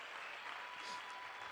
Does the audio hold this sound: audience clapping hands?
yes